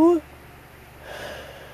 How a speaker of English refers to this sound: Ugh, another yawn, man. Yawn count? 3.